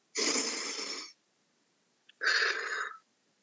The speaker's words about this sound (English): We're going to switch the breath now. We're going to start breathing in through the nose and out through the mouth.